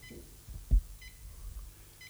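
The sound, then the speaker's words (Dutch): A timer phone safe on a table, holding four phones, emits short, faint electronic beeps at regular intervals, roughly one every second, as it is set to one hour and starts counting down, with a soft low thump and some background noise; no one speaks. “Nou staat er voor ons op de tafel een hele mooie telefoonkluis, die als tijdsbewaking gaat dienen.”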